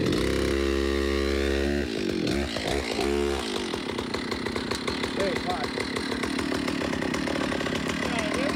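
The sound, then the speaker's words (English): A chainsaw engine idles steadily, then revs up and down in a few sharp surges before settling into a loud, continuous, ragged roar. “The thing I learned from studying the weaponry was that in the ancient times, the warriors were one with their weapons, and so I've become one with my chainsaw.”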